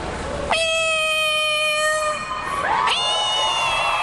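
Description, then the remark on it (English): A beauty pageant contestant on stage, asked for her best animal impression, imitates a cat with two long, drawn-out meows. The first is held steady for over a second and the second rises sharply. Loud, over a faint background hum. “I would love to mimic a cat.”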